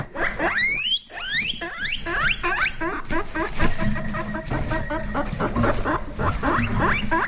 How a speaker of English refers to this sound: This is a pet that you might have as a kid. It's a guinea pig. Yeah, guinea pig. Interesting sound they make, don't they? Cute little things, huh?